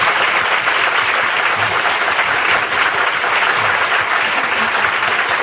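A crowd applauds steadily, many hands clapping in a dense, even wash of sound that holds at a constant loud level throughout, with no talking.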